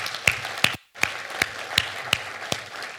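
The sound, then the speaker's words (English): An audience at the Bluff applauds past student ministry leaders in a steady, dense wash of clapping, with a few sharper individual claps popping out every half second or so and a brief dip in the middle. “And so let's give a round of applause for all those who have ever been relentless leaders.”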